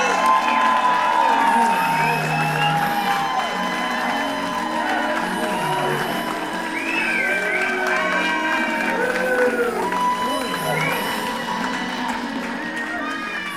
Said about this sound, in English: I'm like, boy, they're clapping hard for my intro, yeah!